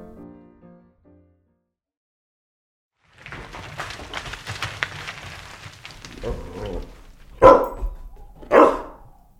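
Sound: puppy barking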